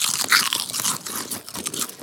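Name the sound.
crunching potato chips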